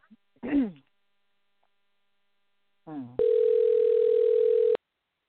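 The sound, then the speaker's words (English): A single steady telephone ringing tone of an outgoing call sounds for about a second and a half, clear, after a couple of brief voice sounds, then stops abruptly. “let's give Bob a call and get him on the line here real quick, and see if his line works. And it's not ringing.”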